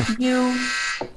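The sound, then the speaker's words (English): A single harsh, steady electronic buzz sounds for a bit under a second at a low, droning pitch, like a game-show buzzer signalling time is up, with brief faint sounds on either side. “Your time's up. You wrote out. Didn't you hear the buzzer?”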